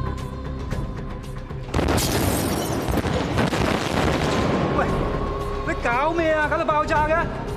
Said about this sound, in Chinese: 硬啊嘛，要睇到，要震撼啊嘛！ 咁你都唔使整个大爆炸出嚟系嘛？ 算啦算啦，咁大声惊人哋听到，我哋都系走先啦。